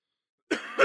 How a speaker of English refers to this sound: Oh, excuse me. Fucking coughing up a lung up here. I'm going to get a drink.